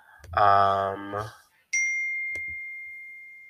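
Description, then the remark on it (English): A short voiced sound is followed by a single bright phone notification ding that rings out clearly and slowly fades, fairly loud. “excuse me, I gotta put my phone on Do Not Disturb because everybody wants to blow up my cellular device.”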